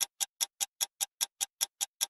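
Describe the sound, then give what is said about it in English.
A clock ticks quickly and steadily, about eleven crisp clicks in two seconds, evenly spaced against silence with no voices. “A clock tick, tick, tick, because that's my new thing.”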